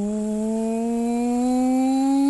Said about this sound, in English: Electric engine gaining speed. So now, what sort of engine? What you're hearing in the background is like, doot, doot, doot, doot, and you're hearing